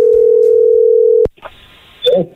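A phone call placed from a local shop about a vehicle's oil change rings on the line as a single steady, mid-pitched tone, cut off by a sharp click of the pickup, then faint line hiss and a brief voice answering.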